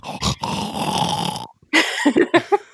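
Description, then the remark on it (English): A person loudly imitates the snoring of someone who falls asleep in a theater, a long rough rattling rumble for over a second, then a pause followed by several shorter, choppy grunting snorts. “And, of course, I'd be in the theater with that, like, person who falls asleep and starts snoring and they sound like a German tank rolling through your yard.”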